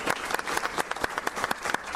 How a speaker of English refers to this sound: And I'd like for you all to give your legislature a round of applause.